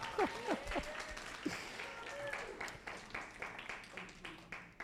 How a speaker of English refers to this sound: You can clap if you want.